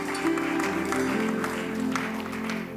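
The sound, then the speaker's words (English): An audience claps steadily as an offering to the Lord, a dense wash of many hands applauding at a consistent loudness for a few seconds, with a sustained low musical drone underneath. “Give the Lord a clap offering in this house.”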